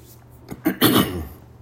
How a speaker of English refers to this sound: I gotta clear my throat again. Sorry, this is unedited, guys.